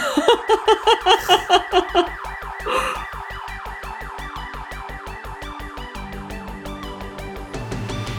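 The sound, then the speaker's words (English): A loud car alarm blares, cycling from a warbling whoop into a rapid, steady series of electronic beeps, then shifting to a lower tone near the end. “and then she really does go, "Is that a car alarm?"”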